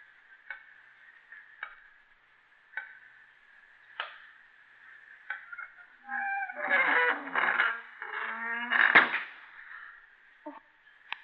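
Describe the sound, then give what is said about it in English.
A heavy door of solid stone grinds shut with a loud, rough scraping rumble lasting a few seconds, locking people inside a room of mummy cases. Before it, a steady hum is broken by a few sparse ticking clicks. No one speaks. “Someone's closed the door. We're locked in.”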